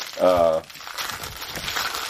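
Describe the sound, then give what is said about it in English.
A short voiced hum at the start gives way to steady crinkling of a small plastic bag being handled and opened, a soft rustle that carries on for a couple of seconds. “On a little plastic bag here.”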